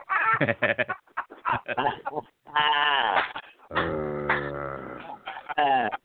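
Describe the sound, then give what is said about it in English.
In a viral mashup video, a man's voice for the cartoon character He-Man imitates a dog, letting out a string of loud, harsh barks and yelps in irregular bursts, with a few drawn-out howling tones in between. “The video then shows He-Man barking like a dog, posing as an FBI agent at the airport.”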